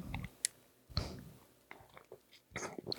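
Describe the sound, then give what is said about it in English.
Someone takes a drink of a clear Target-brand liquor, with wet gulping and swallowing sounds, small mouth clicks and a few quiet slurps spread over a few seconds. No one speaks. “It does taste better when you take bigger sips, like gulps almost.”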